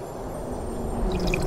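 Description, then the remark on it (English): Hawaiian Punch spills and splashes onto an open box of upright, sharp number 2 graphite pencils, a steady wet gush with squishy, dripping texture that swells slightly louder toward the end, with no voices. “Oh, this box of pencils is ruined with all this Hawaiian punch.”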